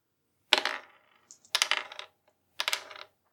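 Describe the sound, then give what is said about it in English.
Three dice rattling and clattering across a hard surface, rolled for a total of 14, heard as three short bursts of tumbling clicks with brief pauses between, fairly loud, with no voices. “And I am going to roll three dice.”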